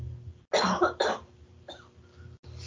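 cough

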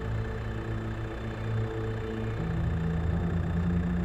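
car engine running idle

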